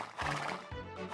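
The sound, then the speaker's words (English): A horse in a video game whinnies in a loud, wavering neigh with strong harmonics, broken into a few rising and falling pulses over about a second. “Oh, there's a horse. Hello, horse.”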